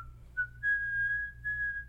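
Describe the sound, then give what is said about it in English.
Someone whistles the nursery rhyme Itsy Bitsy Spider, a few clear sustained notes, over a low steady hum with no talking. “And so then she starts whistling Itsy Bitsy Spider.”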